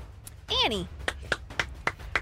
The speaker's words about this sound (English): for the applause